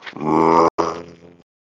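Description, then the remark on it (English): A deep, loud bellowing creature call echoes across the zone as a bus drives through, seeming to come from all around. It is rich and harmonic, heard alone in two drawn-out bursts split by a brief break, the second trailing off more raggedly. “And as you're driving through, a deep bellowing sound echoes across the zone.”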